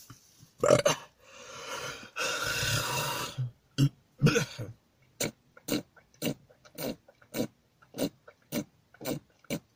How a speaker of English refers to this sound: Gotta get back to the times when I controlled when I was burping. And it wasn't just air trying to escape my throat.